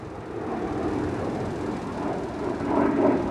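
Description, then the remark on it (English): A steady, broad engine roar of an airplane flying overhead rumbles throughout, swelling slightly louder toward the end. No voices are heard. “Another plane coming through.”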